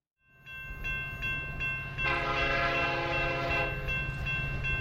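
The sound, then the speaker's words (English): A loud, sustained train horn sound effect for the 'Taysom train' blares for about two seconds over a steady rumbling background, preceded by a few faint rhythmic clicks like wheels on track. No one speaks. “having a little fun with the Taysom train this morning.”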